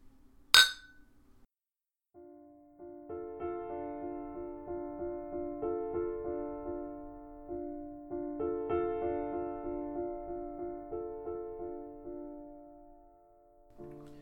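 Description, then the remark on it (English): A single sharp, bright clink of glasses in a toast rings out near the start, then fades as steady melodic music begins and plays to the end. No one speaks. “Amen. Cheers.”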